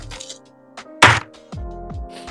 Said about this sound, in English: Drop their dice as loud as can be.